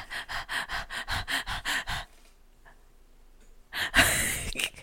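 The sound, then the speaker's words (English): Rapid, rhythmic breaths puff in close succession, then a short hush before one long, loud, deep inhale rushes in. No talking is heard. “We're here in a space. We are breathing, okay?”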